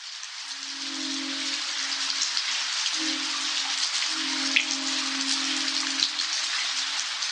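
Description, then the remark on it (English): Steady, dense rainfall hisses throughout a rainstorm in Modesto, California, while soft wind chimes ring beneath it, a few mellow sustained tones starting and fading at irregular moments. “Eric Vanderwick recorded the subtle twinkling of wind chimes during a rainstorm in Modesto, California, and picked up a passing train and a howling coyote along the way.”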